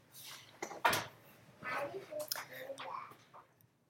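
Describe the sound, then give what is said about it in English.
Children shut a door all the way with a single sharp thump, surrounded by quiet, whispery children's voices talking before and after. “Guys, enough. Close the door. All the way.”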